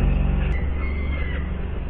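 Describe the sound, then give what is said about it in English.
Seagulls call in Worcester city centre at about 7:50 on a July morning while the council cleans the streets, their loud, wailing, mewing cries drawn out over a steady low rumble, with no one talking. “Weirdly, the sound of seagulls and the council cleaning the streets.”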